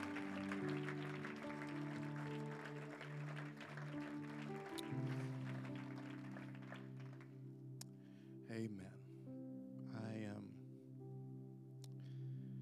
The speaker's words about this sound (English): Can we clap our hands to the Lord one more time?